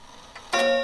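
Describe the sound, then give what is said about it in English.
A clock ticks: a soft tick, then a sharper, louder one that leaves a bright metallic ring hanging in the air. No voices. “I'm gonna break that obnoxious clock.”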